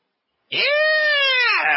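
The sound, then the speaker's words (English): One loud, sustained, high-pitched excited yell bursts out of silence, holding a steady, tonal pitch for over a second before sliding slightly downward at the end. “I don't know if that's death growl good, but, you know.”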